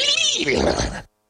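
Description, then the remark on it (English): A single loud, drawn-out cat yowl lasting about a second, rising and falling in pitch before cutting off abruptly into silence. “A shout out there to all cats.”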